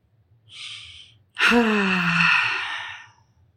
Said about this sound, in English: Taking a deep breath, just a moment of just, what would that be?